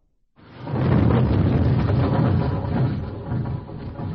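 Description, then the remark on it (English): Snowplows grinding through snow on the other side of a barrier of snow: a deep, heavy mechanical rumble that swells up quickly from silence and holds steady and loud, with a rough churning texture and no voices. “That is coming from the other side of the barrier of snow.”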